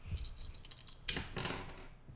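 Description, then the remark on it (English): Real dice are rolled, clattering and tumbling across a hard tabletop in a quick burst of small clicks, with one sharper knock partway through, fairly quiet, with no talking. “Okay, I'll go get real dice. Okay. All right, I'm going to roll here. Some dice ASMR.”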